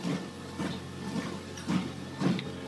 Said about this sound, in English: Hey, I'm on my treadmill doing my Camino. You can hear the treadmill in the background.